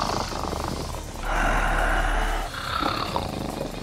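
A big cat lets out a deep, rasping roar that swells loudest midway, trailing off into rough, rumbling growls, with no voices.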